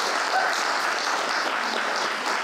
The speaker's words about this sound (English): So let's have a round of applause for ….